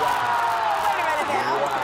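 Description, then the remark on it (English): A crowd cheers and roars loudly and steadily for a couple of seconds, with whoops and shouts blending into a dense wall of voices, after a person makes a full-court putt challenge at halftime. “Yeah, so the crowd went wild, of course.”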